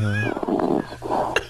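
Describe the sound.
A man on a radio show fakes a snore, pretending to be asleep: a low, buzzy hum slides into rough, raspy breaths with sharp, exaggerated bursts, lasting about a second and a half.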